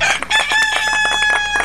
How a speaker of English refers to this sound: That's my rooster, Big Red.